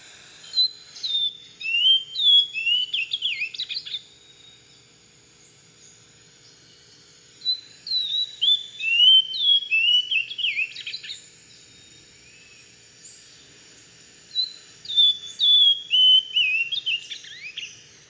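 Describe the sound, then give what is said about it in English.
A bird, an Amazonian grosbeak in a green bush in the Amazon, sings three separate bursts of high, warbling whistles and chirps, each a few seconds long with short pauses between, clear against a quiet background with no talking. “And we spot this bird.”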